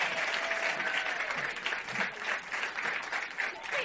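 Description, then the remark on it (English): A crowd claps steadily for author Anna David at her show, a dense wash of many hands with a few scattered cheers and whoops rising over it, sustained at an even, fairly loud level throughout. “So big round of applause for, that's her name right there, Anna David.”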